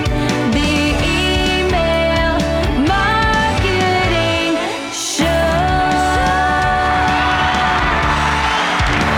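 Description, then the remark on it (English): A large crowd screams and cheers continuously at full volume, many high voices overlapping into a dense roar, with a brief lull about halfway through before the shrieking surges back. “That crowd of screaming fans.”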